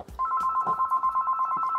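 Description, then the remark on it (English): A landline house telephone rings with a steady, rapidly trilling bell tone that starts a moment in and continues unbroken to the end, fairly loud, with a few soft thumps underneath. “Phone going.”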